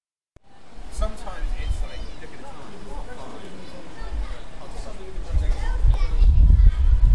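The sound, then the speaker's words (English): Pub noise: a steady babble of many overlapping voices and lively chatter, with a low rumble that grows louder toward the end, heard while walking past the Prince of Wales pub along a canal path. “that noise you heard before then was the Prince of Wales pub that I've just passed by.”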